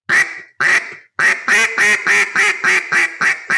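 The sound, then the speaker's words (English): A duck call blown in loud, hard, aggressive quacks with the air not fading out: two separate blasts, then a fast run of about eight sharp, punchy quacks in steady rhythm, forceful with no trailing off. “On a hard quack or a more aggressive quack, your air is not fading out.”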